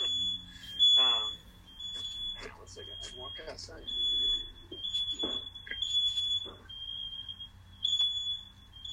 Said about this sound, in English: Oh, fire alarm's going on.